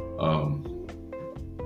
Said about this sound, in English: Sorry, my dog is moving around. That's what you're hearing.